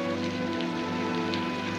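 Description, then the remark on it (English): Steady rain falls in a continuous, even patter, with a faint low hum running underneath and no voices. “It's just the rain.”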